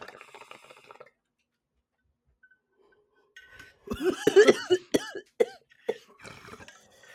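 A short burst of bong water bubbling and gurgling during a hit, followed after a pause by a loud fit of harsh coughing and throat clearing with faint clinks.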